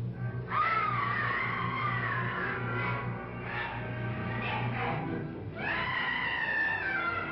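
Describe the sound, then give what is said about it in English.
Actress Una O'Connor, playing a servant of the Frankensteins in a Frankenstein film, lets out two long, high-pitched screams, the first wavering for a couple of seconds, the second rising sharply near the end, over a steady low hum. “She's clearly there for three reasons. Comic relief, screaming, and raising the alarm.”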